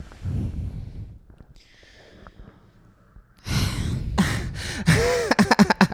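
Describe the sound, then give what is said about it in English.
A voice imitates a person's exaggerated gasp as an impression: after soft low breathing, loud, breathy inhalations burst out and end in a run of quick, choppy gasping breaths. “Like regularly I hear you do that gasp in conversation with me.”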